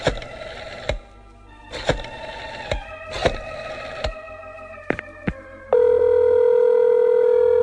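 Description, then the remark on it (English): A telephone being dialed from an office to call another office: a series of short button clicks and brief tones at an uneven pace, followed by a steady, sustained tone that holds to the end, clear with no voices. “I'm going to call my co-producer, Leonard Leroy, while I'm sitting here in my office. I will call him at his office.”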